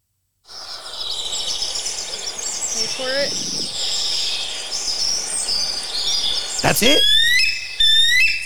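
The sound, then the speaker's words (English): Over a steady buzzing insect-like background, a bald eagle in a video being played gives a few high, thin, chattering chirps near the end. Brief speech interrupts partway through. “I found a video of a bald eagle. Oh, the real bald eagle cawing?”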